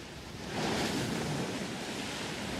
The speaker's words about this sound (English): Now, as a young child, when I read this story, I picture like just this treacherous storm that is taking place, much like something I've seen on TV recently. Maybe you've seen this as well. Take a watch. Roaring sea.